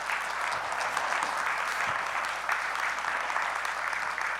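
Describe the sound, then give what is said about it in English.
A church audience claps their hands for the Lord one morning in sustained applause, a dense, steady wash of many overlapping claps at an even loudness throughout, with no voices standing out. “If you received the teaching, can you give the Lord a hand clap this morning?”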